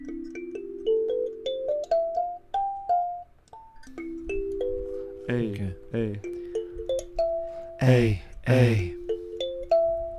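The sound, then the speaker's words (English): A doorbell-like ding-dong chime plays a series of clear, sustained tones stepping up in pitch, fairly loud, with bursts of a voice cutting in over the later notes. “Do you need a doorbell?”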